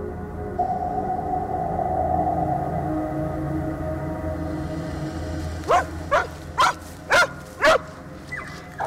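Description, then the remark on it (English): A cadaver dog whines softly against a low background hum, then lets out a run of five sharp, evenly spaced barks before falling quiet. “Three separate dogs, three identical reactions, and exactly the same place.”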